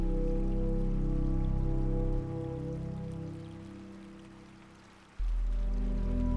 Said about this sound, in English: The first little droplets of rain fall to your face.